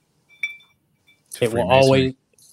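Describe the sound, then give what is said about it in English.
A couple of light, ringing glass clinks, followed by a loud voiced exclamation, like people calling out together mid-toast, in a toast to Freemasonry. “We traditionally bring our show to a close here with a toast.”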